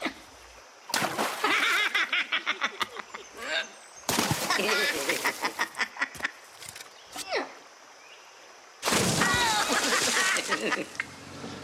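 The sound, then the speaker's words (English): In a Geico commercial, woodchucks chuck pieces of wood that clatter together in three loud bursts of rapid thuds and knocks, with brief pauses between them and some chattering animal-like noises mixed in. “Do woodchucks chuck wood?”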